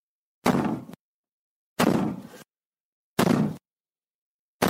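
Loud, heavy knocks on an apartment door, delivered as single booming blows at a slow, steady pace with short silences between, each thud ringing out briefly before fading.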